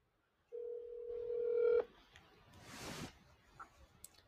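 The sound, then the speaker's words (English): A steady telephone dial tone hums for about a second as a phone call is dialed, then cuts off, followed by a brief rush of line noise and a few faint clicks and beeps. No one speaks. “I'm going to see if I can get Rich O'Toole on the phone here”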